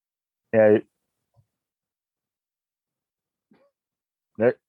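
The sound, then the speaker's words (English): A dog in a house with 11 dogs gives two sharp, fairly loud barks about four seconds apart, with near silence in between apart from a couple of faint clicks. “I have 11 dogs in my house, and you probably don't want to hear them barking.”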